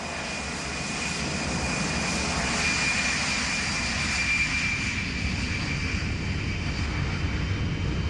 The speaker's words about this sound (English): We were on an Aer Lingus plane.